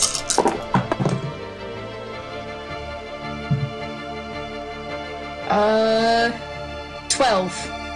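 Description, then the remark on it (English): Magma-looking dice, rolled for a dexterity saving throw in a tabletop game, clatter across a table in a quick burst of sharp taps and knocks, followed by a lone soft thunk; voices speak briefly afterward. “I'm gonna use my magma looking dice.”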